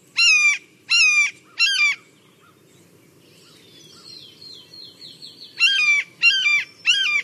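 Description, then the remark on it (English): A blue jay mimics a red-tailed hawk with loud, harsh screeching cries: three in quick succession, a pause filled with faint twittering birdsong, then three more. “Well, it so happens that we have sound of a blue jay imitating a hawk.”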